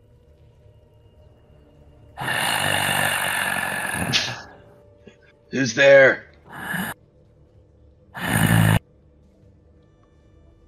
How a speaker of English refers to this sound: A terrible stench fills this compartment, but the flickering lights can't reveal its source. You do, however, hear heavy breathing.